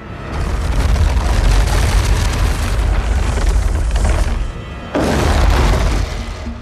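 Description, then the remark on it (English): A loud, deep grinding rumble made by dragging a cinder block across a wooden floor, the menacing rumble sound designers created for the fire-breathing demon Balrog in The Lord of the Rings movies, roars continuously with heavy low end, dips briefly, then surges back. No one speaks. “Sound designers created his menacing rumble by dragging a cinder block across a wooden floor.”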